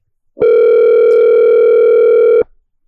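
A steady telephone dial tone sounds loud for about two seconds while a call is placed back after a dropped call, a single unbroken electronic hum that starts and stops abruptly, with no voices around it.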